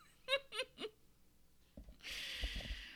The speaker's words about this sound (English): Tired, as I'm yawning.